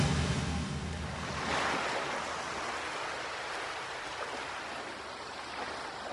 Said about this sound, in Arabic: انتقلنا هلأ على شط البحر